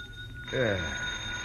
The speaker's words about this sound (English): But the jackhammer didn't stop. I switched on the light and looked at my watch. It was 1 in the a.m., and the phone on my bed table was screaming for an answer.